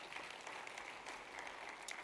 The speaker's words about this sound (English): Come on, somebody right now, give a clap offering of praise to our Lord God.